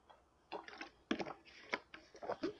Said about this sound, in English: If y'all heard that gulp, sorry.